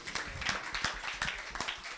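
A crowd applauds with dense, overlapping claps that form a steady, crackling wash of sound for about two seconds, with no voices standing out.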